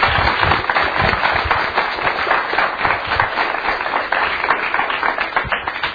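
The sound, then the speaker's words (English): An audience at a presentation applauds the presenter steadily, many hands clapping in a dense, crackling burst that holds at an even loudness for several seconds, with no voices standing out. “Before we do questions, how about a round of applause for me?”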